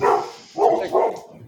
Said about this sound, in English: Got dogs barking. Excuse me.